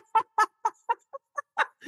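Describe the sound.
A voice imitates a clucking rooster with a quick run of about eight short, choppy clucks at a steady rhythm, fairly loud, with no other sounds around it.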